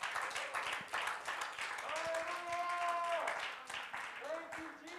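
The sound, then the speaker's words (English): A crowd claps steadily and densely for several seconds as a hand clap offering to the Lord, a continuous rattling wash of hands, while voices cry out above it in sustained, held tones. “Give the Lord a hand clap of offering.”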